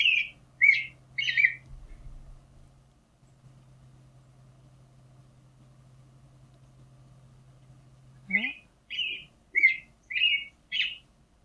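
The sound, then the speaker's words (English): An American robin sings clear, rising-and-falling caroling phrases in short bursts, a few at the start and a quicker run near the end, over a low steady engine hum in the background. “has a track of a robin singing, which we should listen to because he's usually a big star in the dawn chorus”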